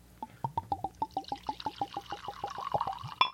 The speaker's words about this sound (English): Anyway, that said, I'm going to pour some of this very exciting scotch whiskey. Present your glass, please. Presented.